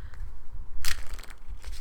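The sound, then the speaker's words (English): Stiff, brand-new playing cards are shuffled on a knee: a short, bright burst of crackly riffling stands out, with a few softer flicks and taps before and after. No one speaks. “I'm trying to shuffle on my knee.”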